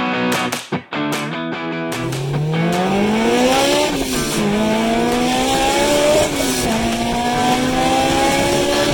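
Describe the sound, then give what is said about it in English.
A car engine revs hard and climbs in pitch through several gear changes, loud, with screeching tire noise mixed in after a few brief bursts at the start. “By the way, send your car sounds into the show. I like to play them on the show.”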